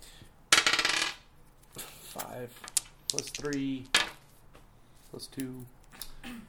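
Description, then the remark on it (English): A twenty-sided die is rolled during a tabletop role-playing game to examine an ornate desk for traps and locks, clattering across a hard surface: a loud initial burst of rattling, then a scatter of sharp, quieter clicks as it settles, with voices talking over the end. “All right, D20.”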